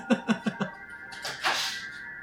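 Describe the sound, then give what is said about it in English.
Four quick, soft thuds in a steady rhythm, then a brief swishing sweep as a door swings shut. The sounds are moderately quiet, with no voices. “Just going to close the door.”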